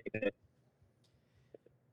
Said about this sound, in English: we're having a little bit of a connection issue.